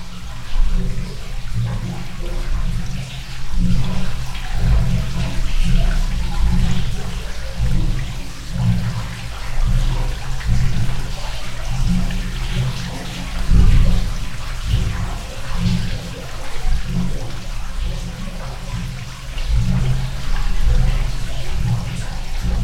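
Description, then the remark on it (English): Rushing meltwater with a deep, rhythmic pulsing, like a glacier breathing: low gurgling surges rise and fall steadily over a constant watery hiss, with no voices. “I happened to be in this one spot and I heard this amazing glacier breathing sound and I recorded a little bit”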